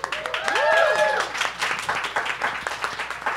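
An audience applauds with a steady patter of many hands clapping throughout, fairly loud and even. A brief rising-and-falling voice, like a cheer, sounds over the clapping near the start.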